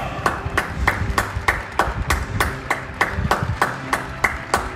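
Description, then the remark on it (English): Steady, rhythmic clapping from people at the open windows of lockdown houses around 8 o'clock, applauding health workers; about fifteen sharp, crisp claps evenly spaced at a brisk pace over a low, murmuring rumble of background noise with no clear speech. “But the best part of my week is now, around 8 o'clock, when we open the windows of our lockdown houses and we clap for the health workers who are trying to help us. People are clapping, singing.”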